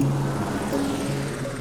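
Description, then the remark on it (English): A helicopter, one of several following an object hurtling through the air, drones steadily overhead, its engine hum and rotor noise forming a continuous, fairly loud rumble with low humming tones throughout; no voices are present. “There are helicopters following this.”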